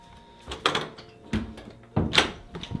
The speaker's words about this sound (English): I'm going to close this door right here.